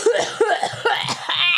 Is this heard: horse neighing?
no